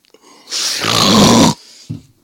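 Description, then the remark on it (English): A voice imitates a man snoring while sleeping: one long, rough, rattling inhale lasting about a second, followed by a short throaty grunt. “It's just him sleeping.”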